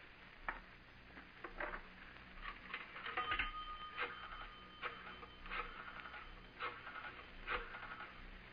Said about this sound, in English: Now, look, my friend. I'm going to make a phone call.